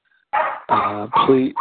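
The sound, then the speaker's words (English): A dog named Charlie barks, three loud, rough barks in quick succession, followed by the start of a fourth, with no talking underneath. “please, you see, even the dogs acknowledge what I'm going to say.”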